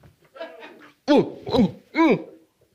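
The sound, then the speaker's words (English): A voice acts out sneezing on someone's face: three loud, voiced bursts in quick succession, each rising and falling in pitch, preceded by a short stretch of soft murmured vocalising. “I didn't mean to sneeze on your face.”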